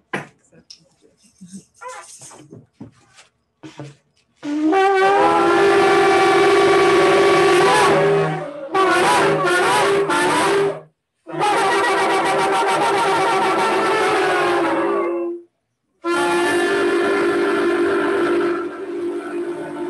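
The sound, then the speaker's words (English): A shofar sounds a teruah: loud, raw, horn-like blasts with a rapid wavering pulse, repeated in several long bursts with brief gaps, after a few seconds of faint murmuring. “So everyone with a shofar, you know, we're going to Teruah.”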